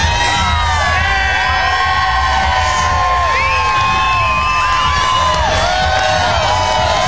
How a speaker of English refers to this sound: As you hear the crowd, come on!